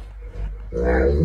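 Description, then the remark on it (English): A dog gives a drawn-out, voice-like vocalization that sounds almost like human speech, rising suddenly after a low rumbling start and holding steady and fairly loud to the end. “You know how you have dogs that talk like humans?”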